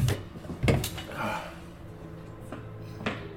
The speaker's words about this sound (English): I gotta blow my nose. Hold on.